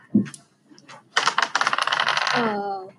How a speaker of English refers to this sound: I want to attack. Okay, roll that red dice.